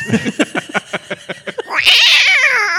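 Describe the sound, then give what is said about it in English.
A voice imitating a lioness: a run of about nine quick rhythmic grunting pulses, then a loud, high-pitched wavering yowl that holds to the end, with no talk over it. “That's called a lioness.”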